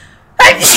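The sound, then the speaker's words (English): A single sharp sneeze bursts out after a near-silent moment, loud and breathy with a hissing tail that lingers briefly. “Bless you.”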